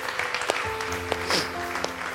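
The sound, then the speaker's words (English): A church audience claps for those who just prayed to receive new life in Jesus, a steady, dense wash of applause while sustained keyboard chords swell underneath and hold for the rest of the moment. “Well, hey, can we just give those who prayed that prayer a round of applause?”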